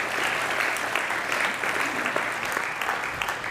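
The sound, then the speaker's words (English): A steady round of applause from a crowd, dense overlapping claps holding an even loudness for several seconds without letting up. “I think that deserves a round of applause and appreciation.”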